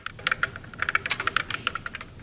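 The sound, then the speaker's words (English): Rapid typing on a computer keyboard to converse with Eliza, a 1960s MIT natural language chatbot program: a steady stream of crisp clicking keystrokes with slight irregular rhythm, fairly quiet, with no voices. “Eliza is a computer program that anyone can converse with via the keyboard, and it'll reply on the screen.”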